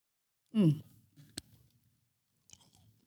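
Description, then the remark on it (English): A brief voiced hum, then chewing of a crispy, nutty Korean snack: one sharp, loud crunch followed by faint crackly bites, with another light crunch near the end. “Man, has there been anything yet that hasn't had a satisfying crunch that we've had?”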